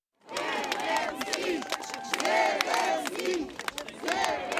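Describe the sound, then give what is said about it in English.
A large crowd in Kherson, Ukraine, cheers and shouts in unison welcoming President Volodymyr Zelensky on his surprise visit to the recently liberated city, with rising and falling chanted calls over a steady roar of voices, sustained and loud throughout. “NPR's Jason Bobian was in Kherson as crowds welcomed their president.”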